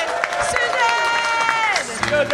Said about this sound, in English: Actually, so everyone give Susan a big round of applause.